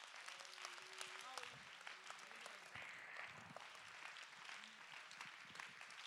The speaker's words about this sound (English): Somebody clap your hand to give him praise.